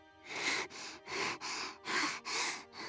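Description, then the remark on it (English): Steady, rhythmic breathing of another being lying beside a girl in the darkness, a series of airy in-and-out breaths about every half second, with no one speaking. “The rhythmic in and out of another being breathing beside her.”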